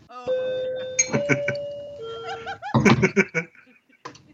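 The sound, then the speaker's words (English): A battery-powered clock chimes a short doorbell-like melody of three or four sustained, ringing tones, clear, while people burst into laughter over and after it. “Somebody's doorbell's going off. Hello. That's my clock.”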